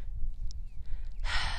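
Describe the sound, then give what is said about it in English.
A mare being trained on a rope exhales in a long, breathy blow, the rushing air starting abruptly near the end over a low, steady background rumble. Nobody speaks. “Breathing out. I have to remember to breathe too.”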